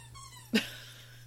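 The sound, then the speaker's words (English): A dog gives a soft, high-pitched whine lasting about half a second, then a brief breathy huff, all fairly faint with a steady low hum underneath and no talking. “Good dog.”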